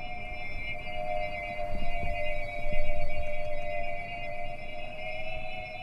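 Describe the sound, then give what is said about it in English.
A steady, eerie chorus of pigeon whistles, tiny bamboo or gourd flutes sewn into the tail feathers of flying pigeons, drones overhead, several pure tones layered and gently wavering as the flock passes, with a faint low rumble of background noise beneath. “That eerie thrumming, that noise of flying saucers from an old science fiction film, that's birds too. Those are pigeon whistles.”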